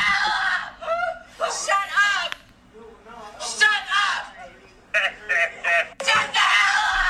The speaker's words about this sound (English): Dude, that's like a fucking blood-curdling fucking scream. That's some insidious shit, you know?